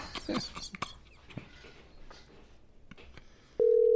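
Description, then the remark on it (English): A few scattered clicks and knocks, then a loud, steady mid-pitched telephone tone starts near the end as an outgoing call to Matt Harbin rings. No one speaks. “Let's give Mr. Matt Harbin a call.”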